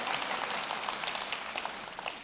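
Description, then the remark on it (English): An audience at a Sunday morning church service claps together in a steady, dense wash of overlapping hand claps that holds at an even level for a couple of seconds, with no voices standing out. “Yeah, you can clap.”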